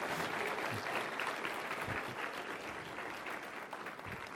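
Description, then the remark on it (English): A crowd at Victory Church claps steadily for several seconds, applauding a baby boy and his new family at his dedication, a dense wash of many hands with occasional louder individual claps, fairly even in volume and with no voices over it. “Could we applaud this little guy in this new family?”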